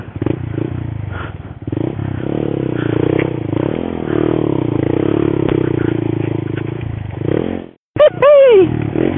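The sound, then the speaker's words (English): The engine of a small Monkey motorcycle, ridden off-road down a gravel track onto a riverbed, putters steadily with a low, buzzing drone and some clattering, then cuts out briefly before a short, sharp rev that rises and falls in pitch. “Okay, so I've ridden the monkey down onto the river.”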